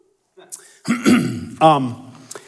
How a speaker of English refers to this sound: So one sec, let me cough. It's just asthma.